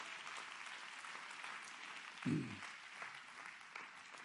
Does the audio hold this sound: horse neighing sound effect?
no